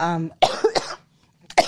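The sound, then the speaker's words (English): An adult with a cough caught from a 3-year-old child coughs in a short cluster of sharp, harsh bursts, then a brief pause before one more cough; a short voiced sound precedes the coughing. “And I'm sorry, I'm still working through whatever cough my 3-year-old gave me.”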